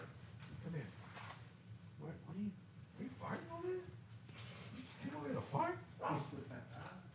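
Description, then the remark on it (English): Dogs yip and whimper in short bursts, a few sharper barks mixed among rising, whiny cries, with voices murmuring underneath. “It's dogs, man. They're all over the place.”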